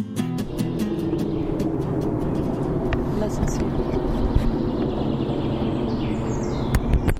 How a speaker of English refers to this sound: So that sound in the background is military planes? Or they have, like, learning lessons here, or, like, how to say it? Training? Yeah, training, yeah.